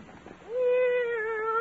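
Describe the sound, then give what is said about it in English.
A single drawn-out meow from a cat named Minerva as she is let out of a bag, fairly loud, rising briefly at the start and then holding a steady, slightly wavering pitch for over a second, with no talking. “then maybe my cat can hide out here for the day”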